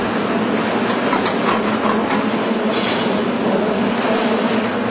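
A cable car, part of the National Park System, runs along its rails coming up to Grant Street in Chinatown, with a steady, loud grinding rumble and rattling hiss, a few brief clanks surfacing early on, with no one talking.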